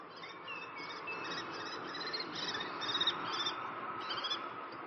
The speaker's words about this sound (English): Wait, animals, birds.